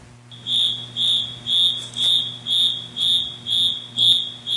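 A security alarm going off in Zone 2 after a breach, on a system from Forsons Fire and Security, that cannot be turned off: a high electronic tone pulsing steadily about twice a second in even, repeated beeps over a low constant hum, with no voices.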